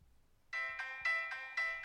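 A phone ringtone bursts in after a short quiet moment, playing a bright, buzzy melody in rhythmic pulses of rich harmonic tones, loud and steady with no voices over it.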